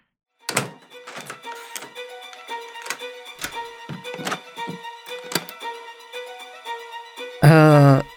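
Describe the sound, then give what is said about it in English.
A long run of metallic clicks, clacks and thunks as several door locks on a rented room's door at the Spirits Merchant are turned and latched one after another, irregular and ringing slightly, ending in a brief loud high squeal. “Now excuse me for a moment while I lock the door.”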